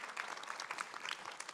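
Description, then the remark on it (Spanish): A crowd claps steadily together, giving applause to the Lord, a dense patter of many hands at moderate loudness, with no voices rising above it. “Damos ese aplauso al Señor.”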